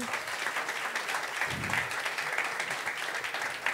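A crowd in a room applauds steadily as a vote by round of applause, many hands clapping in a dense, even patter that holds at a fairly loud level from start to finish, with no voices standing out.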